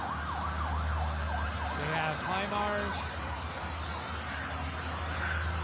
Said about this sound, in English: This is a caravan of flatbed semi-trailer trucks carrying unbelievable amount of military equipment. So now come the trucks.